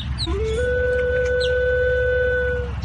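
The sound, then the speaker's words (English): A flute plays a brief low note that steps up into one long, steady held tone with a clear, pure pitch, sounding over a constant low rumble. No one speaks. “And this flute right here, you know, it just sounds really natural.”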